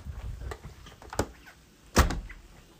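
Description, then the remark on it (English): A door opens with a couple of sharp clunks, a lighter knock first and then a louder thud, over a low rumbling background with no one talking. “Dude, when we don't be locking our doors.”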